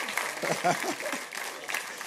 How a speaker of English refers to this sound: He loves the spotlight. Matter of fact, give him an applause. Everybody look at him.